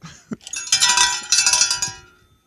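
A bell rings out in two quick clanging bursts, bright and metallic, its high shimmering tones sustaining briefly before fading away. No one speaks.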